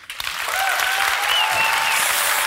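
Sustained audience applause fills the room, a dense steady wash of clapping from many hands that swells quickly and holds at a loud, even level throughout, with a few faint whistles.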